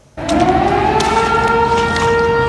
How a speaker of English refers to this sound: As the flood sirens wailed once again through the air over Sumas, Washington.